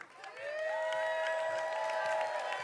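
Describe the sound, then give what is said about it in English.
A group of people cheer and shout encouragement together for a runner in a baton-passing relay race, a steady, loud wash of voices with a few sustained whoops rising above it, lasting a few seconds. “But you got to cheer him on, guys, okay?”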